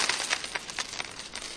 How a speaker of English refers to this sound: Oh, he spilled his coins.